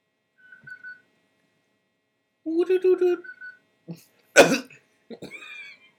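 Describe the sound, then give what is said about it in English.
A person whistles a bird call in short, high tonal bursts, with a brief faint whistle first, a warbling voiced phrase, then a harsh throat-clearing sound before a final trilling whistle. “I had the bird call.”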